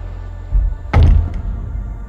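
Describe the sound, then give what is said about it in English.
A sliding door rumbles briefly along its track as a man slides it shut behind him, then it shuts with a solid thump and a faint click just after; no one speaks. “Slides the door shut behind him.”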